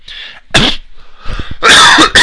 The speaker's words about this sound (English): I'm sorry, there's that cough again. It was plaguing me last night after the first hour.